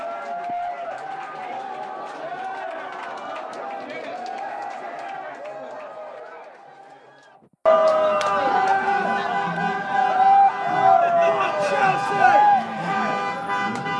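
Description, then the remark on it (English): A large crowd of football fans celebrating a victory over Chelsea after the final whistle cheers and shouts in a dense, continuous roar, with horns tooting through it. The noise fades briefly, then bursts back louder and keeps going. “That's the sound of victory.”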